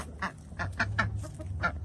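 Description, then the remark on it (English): A female Khaki Campbell duck, left alone by the other ducks, quacks repeatedly in short, harsh bursts, about five or six rapid calls in an irregular rhythm, fairly loud over a low background hum. “And ducks are very social creatures, so she's very mad about that right now.”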